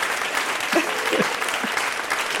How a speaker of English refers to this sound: God, they're still clapping. They're still clapping.